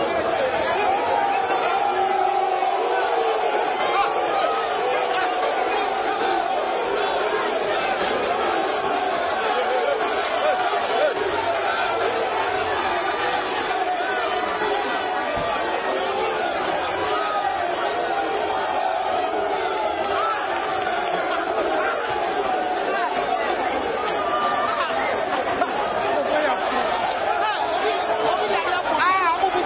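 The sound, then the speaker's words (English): A large, agitated crowd of residents hoots at their Member of Parliament for Swami, Osechi Emesabunsu, and the MCE while throwing various items at them. The crowd keeps up a dense, steady roar of overlapping shouts and hoots for the whole stretch, loud and unbroken, with many voices blending into a continuous clamor. “The residents did not receive this well and then started hooting at the MP and the MCE and threw various items at them.”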